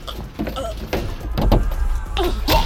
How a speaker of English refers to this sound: The bearded mountain slams me against the stove.